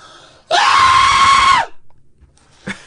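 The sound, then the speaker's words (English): A single loud, shrill scream from a voice lasts about a second, sustained and strained like an exaggerated cartoon shriek, followed by quiet breathing and a brief vocal sound. “My high pitched cartoon scream.”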